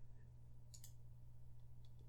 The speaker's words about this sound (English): Is that the Google search that you're typing in?